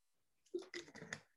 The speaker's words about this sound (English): I'm going to get a drink of water real quick.